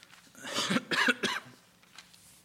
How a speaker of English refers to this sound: We're going to try our best to get through without a coughing fit today. We're on the road to recovery here.